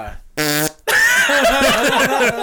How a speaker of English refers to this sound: Yo, the farts. I'm surprised there wasn't more of that. I could do that to any song that you can throw out there.